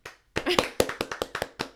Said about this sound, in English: Golf clap.